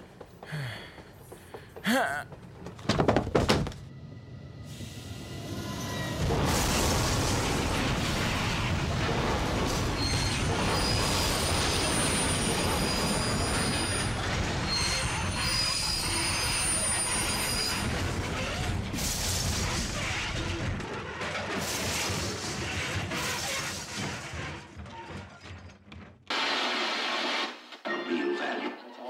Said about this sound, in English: Terror on the tracks. Downtown train wrecks leave dozens injured.